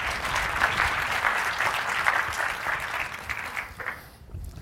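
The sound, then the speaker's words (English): A crowd claps for audience participants in a dense, even wash of applause for about four seconds, then it thins out and fades as the clapping stops. “All right, big round of applause for our audience participants.”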